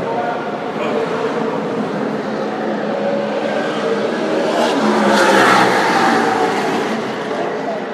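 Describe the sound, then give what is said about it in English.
A dense, continuous roar of race car engines during qualifying at Bristol Motor Speedway, loud and steady throughout, swelling briefly as cars sweep past, with possible faint voices buried underneath. “Once you're inside Bristol, the cars running on the track, it's so loud you can barely hear yourself think.”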